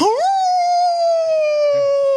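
A single long wolf howl rises quickly, then holds a steady, slowly falling tone for about two seconds, loud, with no talking.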